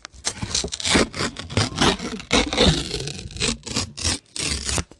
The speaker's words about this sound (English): Let me see if I can demonstrate tearing paper for you. I'm going to now tear paper. Here we go.